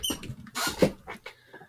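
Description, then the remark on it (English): A dog in a bedroom tears the sheets off a bed: quick, irregular bursts of scratchy rustling and scuffling fabric, with a few sharper squeaks, moderately loud and with no voices. “His sheets are being torn off the bed.”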